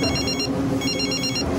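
A telephone rings loudly, giving two bright, trilling bursts separated by a short pause. There is no talking, and the ring cuts off abruptly at the end.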